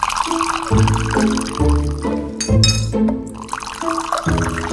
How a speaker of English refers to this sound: They sat on their small sedari, and Jonah's mother brought hot Maghrebi mint tea, pouring it into the cups from high up in the air.